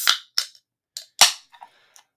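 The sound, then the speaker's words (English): A can of Mud Puppy Porter beer from Central Waters Brewing Co. cracks open with a few sharp, hissing snaps, one louder pop of escaping gas, then a soft fizzing crackle that quickly fades. No voices are heard. “That's the sweet sound of a Mud Puppy Porter from Central Waters Brewing Co.”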